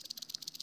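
A small rattlesnake tail rattle shaken in a quick, steady buzz of dry, hissing clicks, fairly quiet and heard alone, with no voices.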